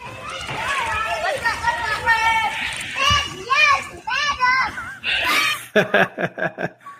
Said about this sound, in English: If you're watching this, if you can hear it barely, it's a squadron of children screaming Black Lives Matter with a little black girl being driven in a cart, like a radio flyer cart, being dragged like a queen on a pedestal.